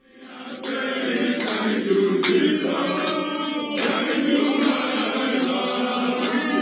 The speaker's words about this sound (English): A crowd in Nigeria welcomes a former state governor after he has served a jail term in Britain.